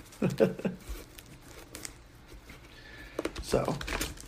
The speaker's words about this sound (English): They're proxy cards. Most of them are proxy. But still trying to shuffle them like a real way hurts my soul. Instead of having four separate piles.